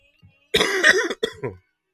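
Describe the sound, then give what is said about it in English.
A person with a cough that has lasted two weeks gives a harsh cough burst, followed by a shorter second cough and a throaty rasp, heard alone against silence. “Well, I should first say, please excuse my cough that I've been saying for the last 2 weeks, but I got my tea here, we're all good.”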